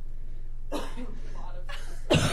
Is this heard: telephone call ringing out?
no